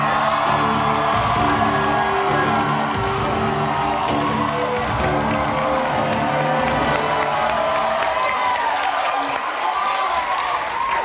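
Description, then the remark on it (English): An audience cheers and applauds steadily as a guest, a lawyer, is welcomed onto a show: a loud wash of clapping with whoops and shouts rising over it, holding strong throughout before thinning slightly at the end. “Did you ever think as a lawyer one day people would be cheering for you when you walked into a room?”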